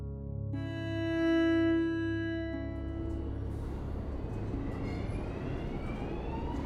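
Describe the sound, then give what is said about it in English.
An underground train rumbles along with a steady whir, its tonal hum sliding in pitch as metallic scraping and rattling noise builds over a deep continuous drone, fairly loud, heard by passengers seated aboard the train. “She and I were together in total silence, listening to the scratches and whirs of the underground, the occasional beeps.”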